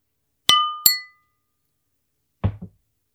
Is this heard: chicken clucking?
no